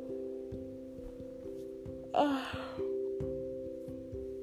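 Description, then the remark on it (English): A single person's yawn, a breathy, drawn-out vocal stretch lasting about half a second, rising above a steady humming tone in the background. No one speaks. “God, I wasn't yawning this much before I started this shit.”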